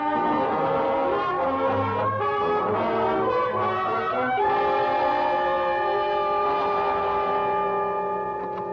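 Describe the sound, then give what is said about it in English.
A loud, sustained train horn blares in long overlapping blasts over a low rumble as a train passes, with the pitch shifting partway through and no voices. “Away from trains, gentlemen.”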